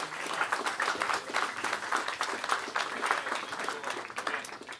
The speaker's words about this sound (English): Démosle un aplauso al Señor en esta hora. Let's give him an applause in this hour.